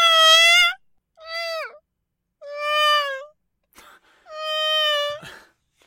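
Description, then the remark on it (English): A dog named Ruby lets out a series of long, high, tonal wailing moans, four drawn-out whale-like cries with short gaps between them, each sliding slightly in pitch, with no talking. “We've reached a whale call moment.”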